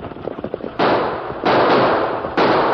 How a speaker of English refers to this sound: Fire your gun into the air.